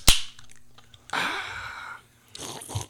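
A sharp crack of the tab popping open on a can of orange pineapple Wegmans sparkling water, followed by a sustained fizzy hiss and then a short slurping sip, fairly loud, with no talking.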